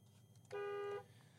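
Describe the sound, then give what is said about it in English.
Steady low road rumble from inside a moving car, interrupted by a single loud car horn honk lasting about half a second, then the engine drone continues. “We want authenticity that you are in a car.”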